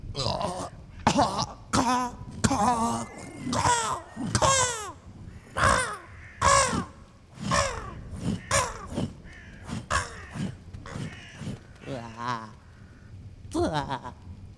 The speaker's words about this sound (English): Wow. so many crows, man. I love crows, dude. Oh, I love crows.